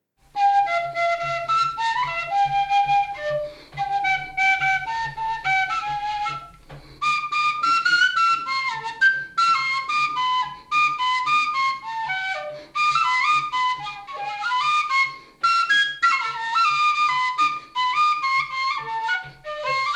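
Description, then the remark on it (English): A bright, high penny whistle, played at home in Sibokeng, plays a quick, bouncy melody of trills and short runs over a steady low accompaniment, continuous and fairly loud, with a brief pause early on and no talking. “This one had me on a penny whistle”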